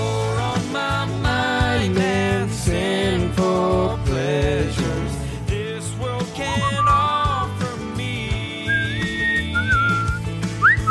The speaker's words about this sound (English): It's been a while since I've had a good whistle.